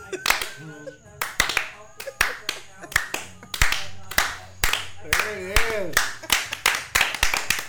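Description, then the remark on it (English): A single pair of hands claps in a steady, unhurried rhythm, around two or three sharp claps per second, while voices talk and laugh underneath. “We should have slow clapped it.”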